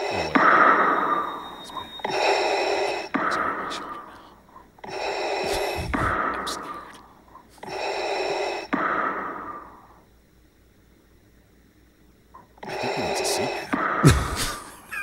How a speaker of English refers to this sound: He's got COPD. He breathes awfully heavy, though.